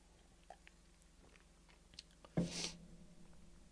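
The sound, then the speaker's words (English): A short, wet sip of water, one brief burst of slurping, set among a few faint clicks and soft mouth noises. No one speaks. “I'm gonna have a drink of water.”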